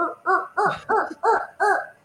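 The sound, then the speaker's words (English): A human voice imitates a turkey call, the sound made to attract a turkey, with six evenly spaced, nasal yelping bursts, each a short rising-and-falling tone, delivered alone at moderate loudness. “Is that the sound you make when you're trying to attract a turkey towards you?”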